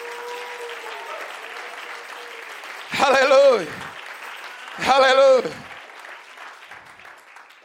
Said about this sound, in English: Come on, everybody, clap your hands to the Lord.